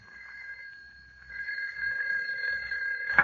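telephone ringing

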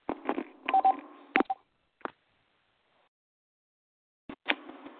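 telephone dialing tones

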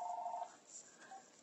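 phone ringing

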